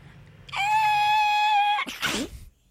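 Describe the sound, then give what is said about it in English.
A person imitates a baby crying: one sustained, high, wavering wail held for over a second, then breaking into a short, breathy, sobbing gasp. “Wait, can you do your best, like, baby cry?”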